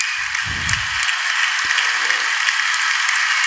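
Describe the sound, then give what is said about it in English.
A steady, dense wash of audience applause for President Donald Trump at his address to members of Congress runs throughout, many hands clapping together without a break, with a few low thumps underneath at the start. “There's so much applause in this.”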